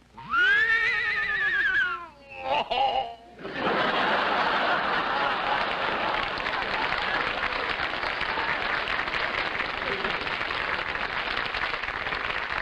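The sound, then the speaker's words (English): A man gives a wavering, high-pitched whinny in imitation of an English horse, a couple of short snorting sounds follow, then an audience breaks into sustained applause and laughter. “we put down for … to imitate an English horse”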